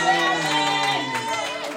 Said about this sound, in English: Clap your hands and shout out, man, like fire.